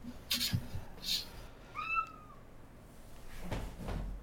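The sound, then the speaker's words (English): A cat lets out a single clear, drawn-out meow that slides downward in pitch, with a few soft rustles and thumps before and after it. “It's weird that he would sound like a cat.”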